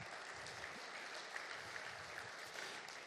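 A crowd applauds the Lord Jesus Christ, clapping steadily in a dense, continuous wash of applause that holds at an even level for the whole stretch, with no voices standing out.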